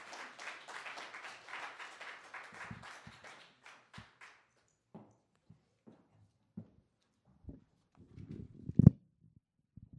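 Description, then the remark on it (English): An audience's applause at Mosaic Church, dense and steady at first, thins out and fades over about four seconds, leaving scattered soft thumps and a few isolated claps. “Could we just give her another really big, round, hearty round of applause?”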